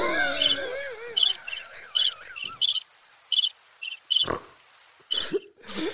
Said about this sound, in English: Crickets.